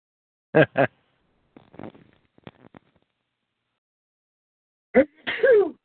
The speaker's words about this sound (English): Monkeys bless you. Bless you.